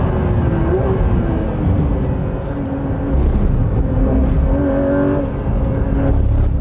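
A Porsche GT3 RS sports car engine drones loudly and steadily, its pitch rising and falling slightly as the car drives along, with a constant rumbling hum.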